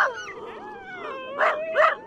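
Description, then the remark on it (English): A sled dog team howls and whines together in long, wavering overlapping tones, with two sharp, loud barks breaking in near the end. No one speaks. “And keep alive at least the sound, that deep-throated growl, the barking howl of the team.”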